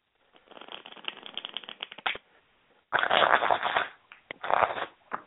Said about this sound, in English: Gosh, yeah, that power shuffling, yeah.